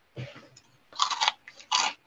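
Close-up crunching on Cheetos cheese puffs, a few loud crisp bites in quick succession with brief pauses between, very near the microphone and with no one talking.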